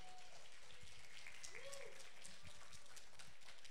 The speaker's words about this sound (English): Round of applause for the kids.